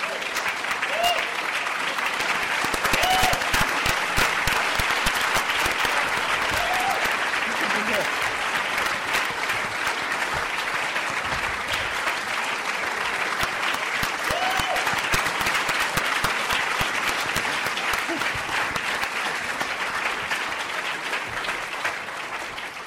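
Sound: audience applauding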